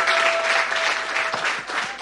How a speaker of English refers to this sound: Please appreciate him. Keep the applause going, please.